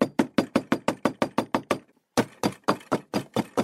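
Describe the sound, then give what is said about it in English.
Rapid, forceful knocking on a front door at Fox Hollow Farm: a quick run of about a dozen loud raps, a brief pause, then another urgent burst of knocks, insistent, with no voices. “First, it was the knocking he continued to hear on his front door.”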